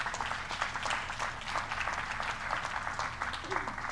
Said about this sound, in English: I thank God for this choir and the musicians. Shall we give them a good clap for the worship that led us?